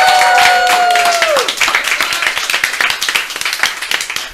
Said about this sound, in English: So can we all get a round of applause for Saj after that?